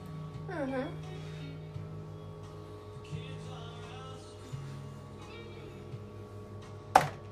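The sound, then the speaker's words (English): Kitchen sounds of chopping, stirring and swishing as food is mixed with water using a half teaspoon, with irregular scraping textures over a steady low hum and one sharp knock near the end. “You hear the kind of chopping, stirring, swishing motions I'm doing.”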